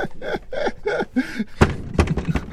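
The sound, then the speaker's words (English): A few heavy, irregular, loud bangs on a door, coming after a short stretch of voiced, sung-like sounds. “This didn't sound like a drum roll, but more like the minister of Greek culture banging at the door.”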